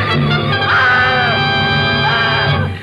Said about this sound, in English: And then she threw up her hands and shrieked.